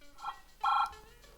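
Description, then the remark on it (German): A telephone rings late at night in a hotel room with a short electronic tone: a faint brief chirp, then a louder, steady buzzing burst lasting about a quarter second. Nobody speaks. “Sie hatten kaum ihre Pyjamas an, als das Telefon klingelte.”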